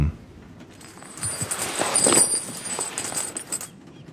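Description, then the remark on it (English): Coins shift and jingle in a pouch for a few seconds, a steady metallic rustle that swells in the middle and then stops abruptly, with no voices. “coins shifting about, and then you can hear the sound of something that sounds like it's closing, and a drawer being shoved closed”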